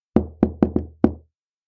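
Five firm knocks on a wooden front door, resonant, in an uneven pattern: two spaced raps, a quick pair, then a final knock after a short pause, with no voices; a visiting uncle knocking as he arrives.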